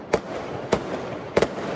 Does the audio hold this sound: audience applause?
no